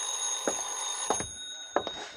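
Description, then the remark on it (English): An old telephone bell rings with a steady, shrill metallic tone, punctuated by three sharp clattering strikes about half a second apart. No voices are heard. “I was just tying my tie when the phone rang.”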